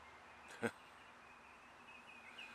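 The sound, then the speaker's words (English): A single short bird chirp stands out against a quiet outdoor background, followed near the end by a few faint, high whistling notes. “Listen to that bird song.”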